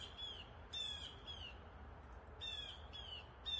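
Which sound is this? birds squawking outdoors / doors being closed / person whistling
birds squawking outdoors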